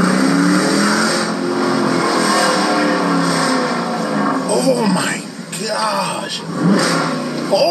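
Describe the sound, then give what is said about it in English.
A car engine, fitted with a cheap modification, revs hard with a rising, harmonic roar, then drops off the revs with descending tones and crackle, loud, with a voice speaking over it. “Oh my god, that light as it comes down off the revs.”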